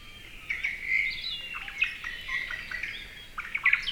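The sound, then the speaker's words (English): A white-eye, a small bird about 4 inches tall, in Hawaii sings a rapid, high-pitched twittering warble that runs continuously for several seconds, with bright chirps rising and falling over a faint background hiss. No one speaks. “White eyes are known as generalists. They eat a variety of food, such as insects, fruit, and nectar.”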